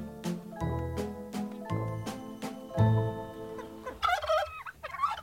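A turkey gobbles loudly, its rapid warbling burst coming near the end after a few seconds of sustained, tonal musical notes.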